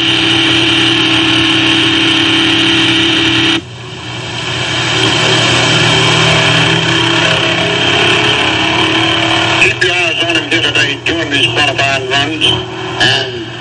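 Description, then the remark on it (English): A loud 1957 Ford stock car, number 91, driven by Tommy Webb on his qualifying run at a racetrack, its engine roaring steadily, its tone shifting abruptly a few seconds in, then turning choppy and uneven near the end, with an indistinct voice beneath the noise. “Ladies and gentlemen, this Tommy Webb, driving this 57 Ford number 91, is one of the real old toes in this stock car racing business.”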